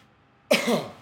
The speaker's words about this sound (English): clearing his throat.